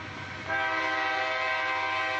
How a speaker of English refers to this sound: Frederick hops on another train. As it makes a stop, he looks out the window and sees Captain McGowan, whom he knows from Mr. Price's shipyard, in the southbound train next to his. But the train gets moving before the captain recognizes him.